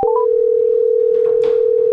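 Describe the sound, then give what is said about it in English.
A steady, loud telephone dial tone hums continuously for the full two seconds as a phone call is placed, with a few faint background rustles and clicks underneath. “Let's hit this phone call and get into it.”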